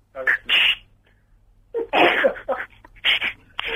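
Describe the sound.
A voice imitates a phone being put down, making a series of short, breathy, hissing mouth bursts with brief pauses between them, fairly loud and clattery.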